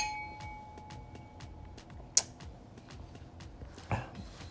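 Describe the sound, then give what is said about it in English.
Glasses of DAVIDA red wine (tinto) from Navarra touch in a toast, giving one bright, short clink that rings briefly, with faint, steady ticking in the background. “Cheers to that.”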